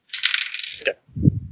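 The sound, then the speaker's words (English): Dice rolled in a tabletop game rattle briskly for almost a second, a dense clattering shake, then tumble onto a table with a dull, low rolling thud, with no voices. “Otherwise, you roll a maximum of 10 dice.”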